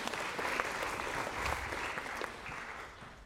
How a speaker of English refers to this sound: But thank you. A round of applause for our two feistier players.